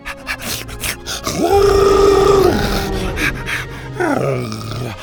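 dinosaur roaring

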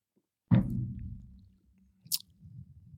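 sipping beer

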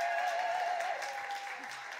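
audience applause and cheering

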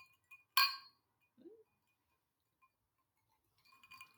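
drinking glasses clinking

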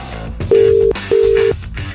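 telephone ringback tone

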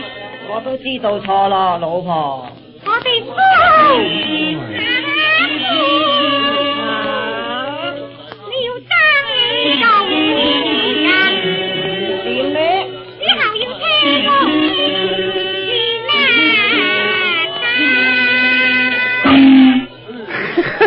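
chinese orchestra music played

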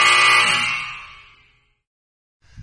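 game buzzer

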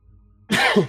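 sneeze

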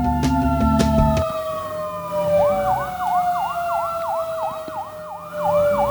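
emergency vehicle sirens outside

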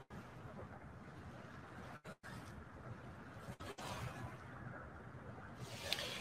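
ocean waves

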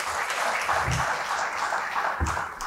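audience applause

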